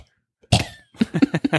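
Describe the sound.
A person gives a small cough, then a quick run of about five croaky, rhythmic vocal bursts, imitating a cartoon frog.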